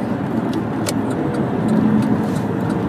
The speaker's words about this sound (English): Traffic's nice and smooth, actually.